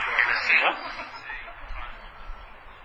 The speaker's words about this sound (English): Echo, I'm hearing myself now. That's terrible.